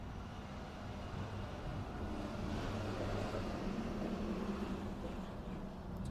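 A heavy school activity bus rumbles past on a street around 4:30, its low engine drone swelling slightly mid-pass and then easing off, with no voices.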